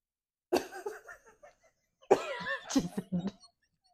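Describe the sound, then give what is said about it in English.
Two drawn-out, exaggerated throat clearings from one voice, the second louder and raspier, separated by a brief pause and with no spoken words. “So, clear my throat.”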